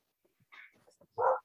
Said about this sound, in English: Do you hear my dog? She's going nuts.